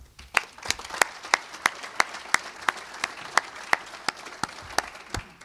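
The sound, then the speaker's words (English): Audience applause from the crowd at the NAIOP August breakfast, titled Experiential Retail Reinvented, with sharp claps standing out in a steady rhythm above a dense wash of clapping that carries on evenly for several seconds. “You're going to hear applause, and then you'll hear the full program from the NAIOP August breakfast titled Experiential Retail Reinvented.”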